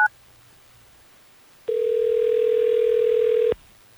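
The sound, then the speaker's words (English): A telephone dial tone, as a call is placed during the Hot 101.5 radio show in Tampa Bay, sounds as one steady, clear hum lasting about two seconds, loud, after a tiny blip and a quiet pause, with no voices. “Well, let's try to get Gabby on the phone so we can figure this out for you.”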